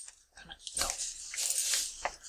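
Coins clink and jingle as they're handled, a busy run of bright metallic taps and rattles over a couple of seconds with no one talking.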